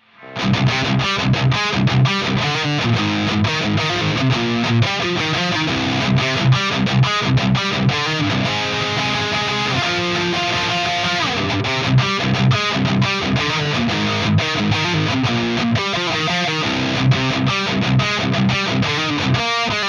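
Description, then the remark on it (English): A loud distorted electric guitar amp in a metal setup, recorded with two microphones with slight EQ on one mic and no compression or reverb, plays a driving, rhythmic riff with choppy chords and sustained notes, continuously for about twenty seconds with no voices. “You can mix the two, you can pan them, you can do whatever you want.”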